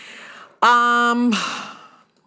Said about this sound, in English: Sorry for the heavy breathing, but I hate to see this.